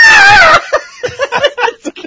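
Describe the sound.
A voice mimics a buzzard's screech with a loud, harsh half-second cry, its strained pitch wavering and sliding downward, then breaks into short, choppy bursts like laughter.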